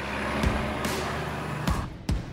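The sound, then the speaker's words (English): An autonomous 18-wheeler semi-truck, a white Volvo big rig pulling a trailer with no driver at the controls, drones steadily along the Florida Turnpike south of Orlando. A constant low engine rumble and road hiss carry a few brief thumps and rattles, no voices. “you may have shared the road with something that has never happened before on an American public highway, a semi-truck driving along with no driver at the controls, an autonomous 18-wheeler.”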